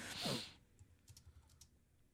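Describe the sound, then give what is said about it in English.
Quiet typing on a computer keyboard, a handful of soft, irregular key clicks tapping away, preceded by a brief louder swishing burst at the start. No one speaks. “I know you guys can hear me typing, sorry.”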